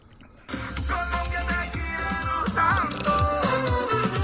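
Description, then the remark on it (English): Loud, dense crunching of potato chips as someone eats them to test their texture in a chip taste test, starting abruptly after a brief quiet moment and continuing steadily, with crackly bursts layered over a busy, sustained background. “He still has to fucking crunch right next to the goddamn.”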